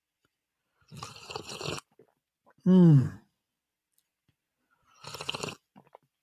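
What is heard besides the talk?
loud sip of coffee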